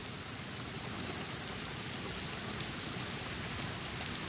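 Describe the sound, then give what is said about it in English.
A thunderstorm soundscape with a binaural beat: steady, dense rain hisses continuously across the whole clip with an even, unbroken texture and a faint low rumble underneath, but no distinct thunderclap. No one speaks. “The soundscape is a thunderstorm.”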